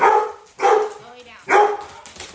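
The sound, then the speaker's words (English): Two dogs barking in sharp, loud bursts as someone knocks on the door of a house in Tattnall County, roughly three barks spaced about a second apart with brief quieter gaps between them. “Her two dogs bounded towards me as I knocked on the door”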